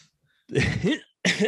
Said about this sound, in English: Excuse me. I'm sorry. That was half cough, half laugh at the same time. I don't know what you call that. A calf?